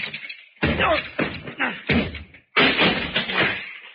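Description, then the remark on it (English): A locked door is battered and broken down: about five heavy, loud thuds and crashes in quick succession, with splintering rattles between the blows and a final crashing burst. “Oh, that door's locked. Stand back, Fern. Yeah. I'll have to break it down.”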